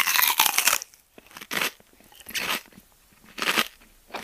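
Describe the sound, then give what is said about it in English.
Someone bites into a banana: a long crunchy first bite followed by three evenly spaced chewing sounds, moist and fairly loud, with no one talking. “Someone sees you and offers you one. Take a bite and chew using all of your facial muscles.”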